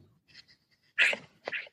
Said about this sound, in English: I have a dog here who wants to speak also. So I have a struggle to keep her out of the way.